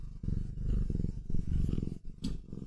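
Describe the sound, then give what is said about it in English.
A cat vocalizes with a deep, rumbling, purr-like growl that pulses steadily for a few seconds, fairly loud, briefly dipping before a short sharper sound near the end. “And he's got a cat.”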